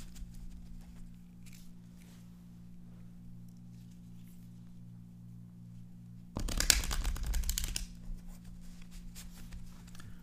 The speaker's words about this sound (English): Shuffling the cards, some ASMR going on.